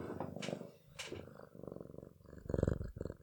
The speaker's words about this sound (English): That's him purring. He has the loudest purr of any cat I've ever heard.